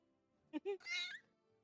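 A cat meows: two quick chirpy calls followed by a longer, rising-and-falling meow, all within about a second, with nothing else going on around it.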